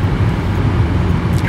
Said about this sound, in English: As a giant truck goes by us, and well, there's another person coming in this way. Okay. Yeah, this is more of a shipping and receiving area, it looks like, eh?